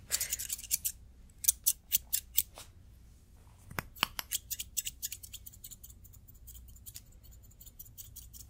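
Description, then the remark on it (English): Scissors snip through hair in quick bursts of crisp, bright clicks, a fast run of cuts followed by a few slower, spaced snips that trail off into softer, faint snipping. “And trim it all off. I like to do fast cuts, so don't worry.”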